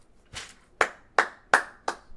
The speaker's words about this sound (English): I'll clap for that one. You're not going to get a laugh, but I'll clap for that one.